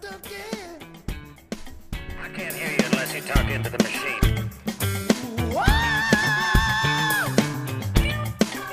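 A man lets out a loud, sustained high-pitched scream lasting a couple of seconds, rising out of a busy, cluttered background of clattering noise and sound.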